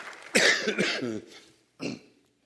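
A person coughs twice: a harsh, drawn-out cough with a raspy, voiced rumble, then a short pause and a second, shorter cough.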